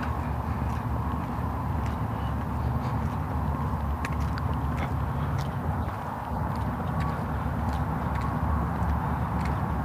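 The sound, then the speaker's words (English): The engine of a pumper truck parked on a sidewalk runs steadily the whole time, a constant low rumble with a rough, churning texture and a few faint clicks and ticks above it. No one speaks. “I hear a truck engine.”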